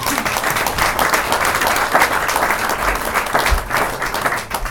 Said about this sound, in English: They are fantastic, so maybe give them a massive applause as well.